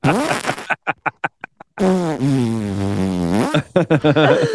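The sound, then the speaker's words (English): A voice imitates farting: a burst of short sputtering pops, then a long, drawn-out buzzing raspberry that wavers in pitch, ending in a few more quick sputters, loud. “You can definitely hear my toots and horns.”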